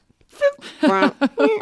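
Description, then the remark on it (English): A voice imitates a car's blinker set to a fart noise in place of the tick-tock: four buzzy, tonal bursts in quick succession, the middle one longest, each with a reedy, droning pitch. “And then you can also set your blinker to be a fart noise.”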